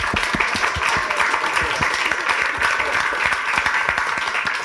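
A crowd applauds steadily for several seconds, dense overlapping claps forming a continuous, fairly loud patter with no voices standing out.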